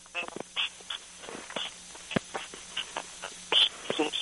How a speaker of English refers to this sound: Your phone is breaking up again. I'm sorry, and I apologize to our listeners for the recording.